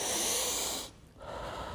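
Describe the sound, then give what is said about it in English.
A deep, airy breath drawn in, a brief pause, then a long breathy exhale, with no talking. “Number one, breathe in and out.”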